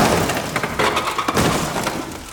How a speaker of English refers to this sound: And as you're pulling yourself up, there is a crash below you as you hear the garbage truck land and just...